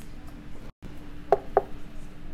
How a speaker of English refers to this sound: Why do I knock on wood? That's so ridiculous. Okay. It works, that's why.